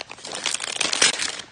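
A bite into a crusty sandwich with extra aioli gives a dense, crackling crunch, a quick run of bright, crisp snaps that swells slightly in the middle and fades, with no voices.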